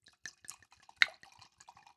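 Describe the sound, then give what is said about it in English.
A 2013 Joel Gott Cabernet trickles and splashes into a glass in a quick run of bright, liquid plinks and gurgles, with one sharper clink near the middle, heard alone without talking. “Oh, let me do a little ASMR moment.”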